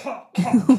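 A short burst of loud coughing, not due to COVID: a softer initial hack followed by two or three sharp, rough coughs in quick succession, with no speech.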